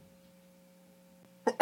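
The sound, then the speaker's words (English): A person sneezes near the end, a quick intake burst followed by a loud, sharp explosive sneeze, after a stretch of quiet low hum. “God bless you. Thank you.”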